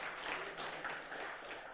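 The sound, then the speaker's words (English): The Transit Church audience in D.C. applauds its elders, a steady, dense wash of many hands clapping that holds at an even, fairly soft level for a couple of seconds with no voices over it. “Give a big round of applause for Transit Church elders.”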